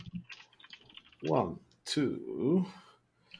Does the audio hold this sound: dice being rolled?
yes